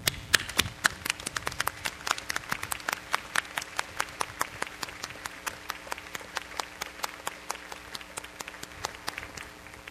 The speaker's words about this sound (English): Please join me in applause to express our appreciation.